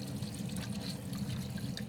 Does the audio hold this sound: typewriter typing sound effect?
no